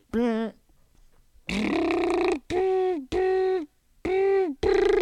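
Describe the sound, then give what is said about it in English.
A voice imitates a dial-up modem connecting to the internet, with a series of loud, warbling tonal bursts separated by short pauses, ending in sustained buzzy squeals. “That's how I sign into the internet on dial-up, and by dial-up I mean fart-up.”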